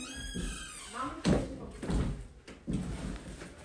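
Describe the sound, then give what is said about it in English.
A door swings shut with a couple of solid thunks, moderately loud, while a voice talks faintly in the background. “Close my door all the way.”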